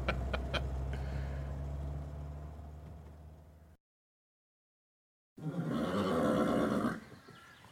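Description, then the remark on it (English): A saddled male horse in Abiquiu gives one loud whinny lasting over a second, following a low rumbling stretch and a brief pause of silence. No one speaks. “Whoa, easy there, big fella. Thanks for adding the saddle”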